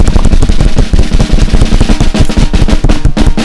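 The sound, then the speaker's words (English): A loud, rapid drum roll for an award announcement rattles steadily for a few seconds, dense fast hits with a deep booming low end and crisp snare-like rattle, with no voices over it. “So, drum roll for Twitter Fingers.”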